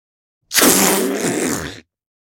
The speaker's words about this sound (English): Balloon air release.